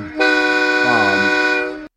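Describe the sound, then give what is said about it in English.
A person vocally imitates the horn in the end zone of a Fort Worth stadium, a converted train engine horn that goes off every time the team scores: a loud, sustained, buzzy, brassy tone held nearly two seconds with a slight wobble in the middle before cutting off abruptly. “they've got like that little thing in the end zone that has all the horns, and it's like it goes off every time they score. It's like this.”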